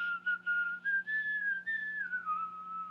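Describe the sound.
Someone whistles the old marching song "When Johnny Comes Marching Home", a clear, steady melody with notes sliding up and then dropping lower, fairly loud over a faint low hum.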